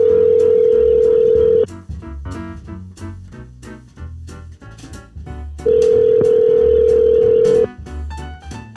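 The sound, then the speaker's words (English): A phone call rings out while trying to reach someone: two long, steady ringback tones about four seconds apart, loud and clear, with rhythmic background music continuing underneath throughout. “But let's go ahead and try to get somebody on the phone here.”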